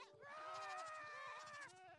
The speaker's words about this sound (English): Alright, so somehow the screaming goat survived all of the creepers, but I haven't figured out which one it is yet.